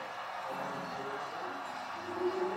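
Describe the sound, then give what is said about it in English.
A dense, steady roar of a large stadium crowd at a Browns American football game fills the whole stretch, loud and unbroken, swelling slightly toward the end, with faint voices mixed into the din. “Well, this crowd making as much noise right now as they have all night.”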